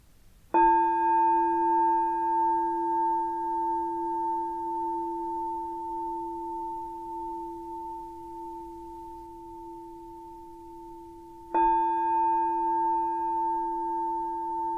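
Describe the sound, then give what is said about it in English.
A meditation bell is struck twice at the start of a guided meditation, about eleven seconds apart. Each strike rings out in a steady, sustained tone with a soft shimmer, slowly fading with no voices. “I'll start with three sounds of the bell and the usual settling in introduction.”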